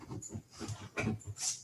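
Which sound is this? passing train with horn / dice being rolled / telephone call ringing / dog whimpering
dog whimpering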